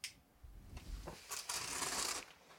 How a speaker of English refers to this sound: He's opening the gift. He's cutting it open.